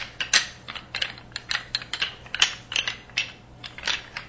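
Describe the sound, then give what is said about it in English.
A bag rustles and crinkles as it is being closed up, in a steady run of short, crisp scratchy bursts, fairly quiet and irregular in rhythm, with no voices. “Let me go ahead and lock the bag up so it doesn't keep making noises.”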